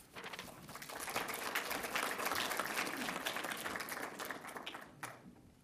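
An audience at a panel discussion breaks into applause, a dense crackle of many hands clapping that swells over the first second, holds steady for several seconds, then tapers off toward the end.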